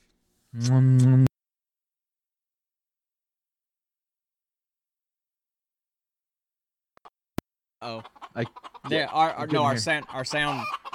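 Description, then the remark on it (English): Chickens clucking: one short, loud call at the start, then a long silent gap caused by an audio engine restart, then a busy run of overlapping clucks and squawks filling the last few seconds. “Anyway, I heard chickens.”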